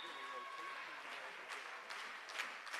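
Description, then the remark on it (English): A crowd claps steadily at a volleyball match in Sumner, a sustained patter of many hands, with faint voices murmuring underneath. “They're clapping here in Sumner.”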